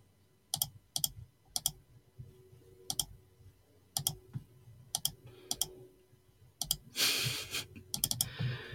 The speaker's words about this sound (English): Sorry, you're going to hear my clicking, but we'll just do that as we're going along.